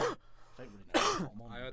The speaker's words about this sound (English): I had the cough. Yeah, you should have had a cough button.